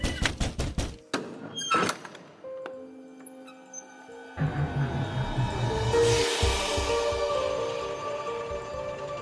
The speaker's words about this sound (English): there was a loud knock at the shed door.